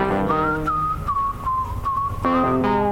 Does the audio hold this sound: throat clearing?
no